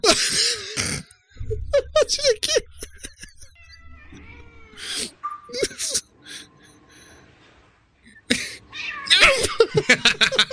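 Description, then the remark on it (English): Cats yowl and meow in long wavering cries, with bursts of hissing and noisy scuffling between them, loud, the caterwauling rising and falling over about ten seconds. “This one was called Oh No Cats.”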